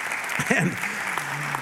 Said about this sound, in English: There are 37 million Christian churches in the world today. 37 million. Yep, you can clap at that.